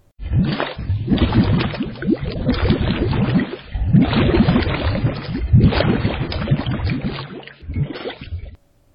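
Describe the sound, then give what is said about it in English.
Water sloshes and churns in a series of heavy, splashing surges lasting several seconds, fairly loud throughout and with no voices, before stopping abruptly. “Well, mix about 10 or 15,000 gallons of water to water it down, and here's what you have.”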